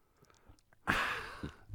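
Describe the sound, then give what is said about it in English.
Sip of water: a few faint mouth clicks, then a sudden breathy slurp that lasts under a second, followed by a soft swallow. No one speaks. “Yum, water.”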